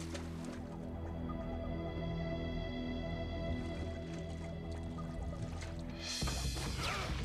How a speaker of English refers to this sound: Wow, that's actually jumping into the water. And that's actually the ranger in the water.